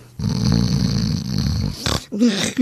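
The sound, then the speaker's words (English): A long, loud, raspy snore drawn out for over a second, followed by a short snort and another rough, rumbling breath, with no talking. “Our one big flaws are snoring.”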